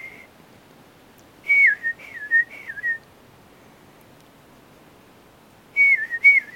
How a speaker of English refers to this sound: That's a Carolina wren over there. See it up on top? Yes. Tiniest little bird. It's the only one that sings in the winter.